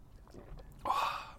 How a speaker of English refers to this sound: just having a slurp of coffee.